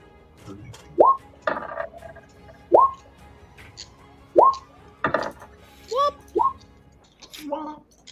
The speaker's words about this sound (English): Do you hear my dice rolling?